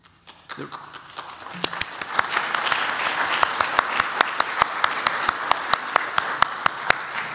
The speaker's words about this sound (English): I think we're going to do a lot of clapping today.